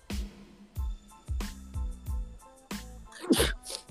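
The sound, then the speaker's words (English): A single sharp sneeze bursts out near the end, over a steady backdrop of rhythmic, thumping beats. “Bless you. Excuse me. Bless you.”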